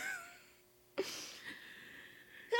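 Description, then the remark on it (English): A single sharp sneeze bursts out suddenly, then trails off into a soft breathy hiss, with faint steady tones humming in the background. “I'm keeping that sneeze in.”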